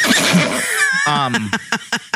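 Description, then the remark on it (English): A person imitates a horse whinny: a breathy, wavering squeal that slides downward, then breaks into a few quick, rhythmic snorting pulses before stopping. “My horse noise.”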